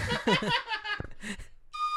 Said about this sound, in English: Why don't you blow the little train whistle, because we got a little segment to do called, this is called Follow-Up Junction.